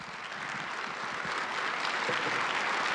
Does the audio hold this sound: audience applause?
yes